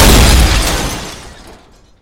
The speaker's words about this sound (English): That is not my schematics, he whispers, and then an explosion rips through the bar.